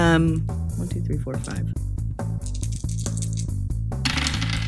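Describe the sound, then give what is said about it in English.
Dice rattle and clatter as they are rolled by hand, with several sharp clicks scattered over a few seconds, heard over a steady, droning background sound. “I'm going to roll them all by hand because I was like, that'll so be cool.”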